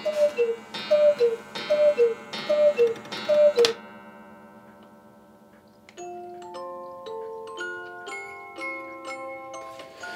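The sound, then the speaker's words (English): A gigantic hand-carved Bavarian cuckoo clock hanging in a bedroom sounds five two-note cuckoo calls in a steady rhythm with mechanical clicks, then, after a brief lull, its music box plays a tinkling melody, clear, with no talking. “The latest additions to his collection, two gigantic hand-carved Bavarian cuckoo clocks, hang in his bedroom.”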